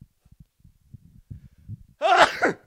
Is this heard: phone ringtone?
no